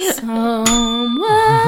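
A voice sings a long, steady bell-like tone that slides upward near the end, mimicking a bell ringing as a 'spoiler bell', with a few brief sharp accents along the way.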